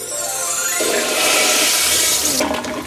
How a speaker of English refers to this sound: Cue sound effect of a toilet flushing. 5 guys held my head in a toilet, and then flushed it.